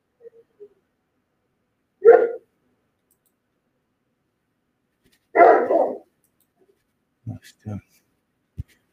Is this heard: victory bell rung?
no